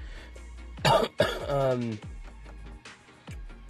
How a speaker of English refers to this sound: Sorry about this cough.